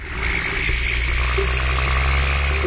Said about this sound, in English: The trundle of logging trucks vibrates through the water. You can feel it in your long whiskers.